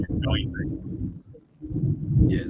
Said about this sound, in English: Mate, there's an absolute thunderstorm happening outside, so hopefully my internet holds up on this one. I always get scared when the thunderstorms happen.